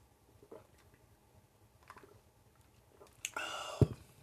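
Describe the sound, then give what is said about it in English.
Quiet mouth and handling noises, then a short burst of wet gulping near the end as someone takes a quick swig of water. “Let me get a swig of some water.”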